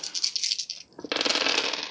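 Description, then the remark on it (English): Dice clatter and rattle across a hard surface, a quick rolling burst, a brief pause, then a second fuller tumble that skitters to a stop. No voices. “Why are you rolling the dice? Why are dice being rolled?”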